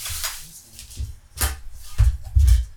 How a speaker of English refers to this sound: But I want to talk about this when the food came. Please excuse the ruffling of the plastic bags.